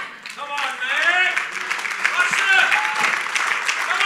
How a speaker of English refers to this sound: So you might ask me, what is the reward for an usher? What you just did. Yeah. You clapped and you said, wow, I'm so blessed that we come into a church where 80 to 90 people a week sacrifice their lives so that I can have a breakthrough.